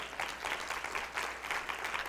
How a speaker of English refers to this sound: Go and give God a hand clap.